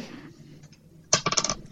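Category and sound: household object, dice being rolled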